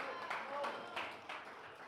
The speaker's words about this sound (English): And three of y'all clap. That proves something.